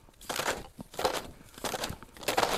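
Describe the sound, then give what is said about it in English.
Melting snow rustles and drops from trees onto the ground in soft, crunchy bursts, about four swishes spaced across a few seconds, with no voices. “It's just so quiet besides the rustling of the snow, or maybe some of the snow that's melting off the trees and hitting the ground.”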